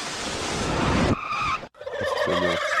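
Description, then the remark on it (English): A burst of loud, rushing noise gives way to a chicken clucking and squawking, with quick, rapid clucks near the end and no one talking. “He does own chickens.”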